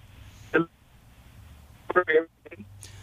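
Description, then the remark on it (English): A muffled, tinny voice of a caller to the radio show Pushing Limits breaks up into a few brief clipped fragments separated by near-silent dropouts, the phone call audio cutting in and out over a low background hum. “Your phone cut out there.”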